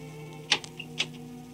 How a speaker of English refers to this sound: At Andrew's apartment, the buzzer is ringing wildly. Half asleep, the candidate for mayor staggers to the door.